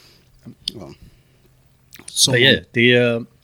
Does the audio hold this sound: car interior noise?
no